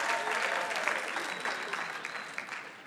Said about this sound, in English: Don't clap for incompetence.